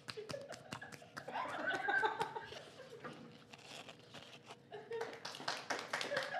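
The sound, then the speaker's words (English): Hands clap in quick, uneven bursts, a scattered round of applause that swells and thins, mixed with some laughter and background voices, during a live show. “What are we clapping for?”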